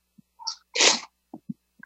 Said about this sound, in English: See, I thought I was going to sneeze, and then I wasn't going to sneeze, and then I sneezed. Apparently, lowering my barriers is having an effect on my sinuses.